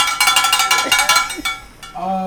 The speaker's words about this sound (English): As you can see, we have a bell. Hey Now, Fame NYC bell